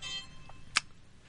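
A phone lets out a single sharp, bright electronic click, preceded by a faint softer blip, over a quiet low hum with no talking.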